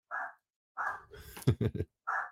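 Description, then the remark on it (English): Dogs sitting on a windowsill and looking out the window bark: three short, clipped barks spaced apart, with a muffled voice-like vocal sound between the second and third. The barks are moderately loud. “So whenever they see something, they're like, oh, it's time to bark now.”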